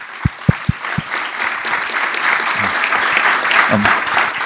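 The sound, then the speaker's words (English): An audience at a film evening breaks into a sustained round of applause for a filmmaker, dense clapping filling the whole stretch and swelling slightly louder as it goes, with a few low thumps near the start. “Can we have a round of applause for all the work that you did,”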